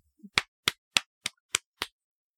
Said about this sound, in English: There you go, Daisy. That was a clap for our first podcast